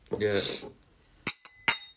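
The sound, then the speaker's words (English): A brief voice at the start, then wine glasses holding a 2022 organic Chardonnay from Spain clink together twice in a toast, each a sharp, bright tap with a short high ring, about half a second apart. “Cheers to that.”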